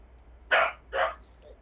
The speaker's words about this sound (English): Oh, we got a dog barking.